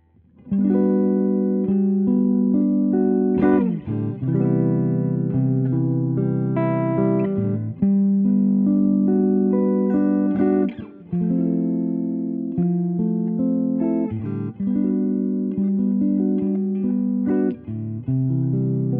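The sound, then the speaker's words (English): A sequence of sustained major seventh chords, G major 7th, C major 7th, G major 7th and F major 7th, each held for a few seconds before changing to the next, played loud and steady with rich overlapping tones and no voices. “I will play G major 7th, C major 7th, G major 7th, and F major 7th.”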